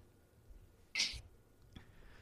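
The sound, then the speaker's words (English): A single short, high-pitched cat cry bursts out once, loud, then fades into a quiet background with a faint tap shortly after. No one speaks. “People are just like coming in and out, and cats are crying.”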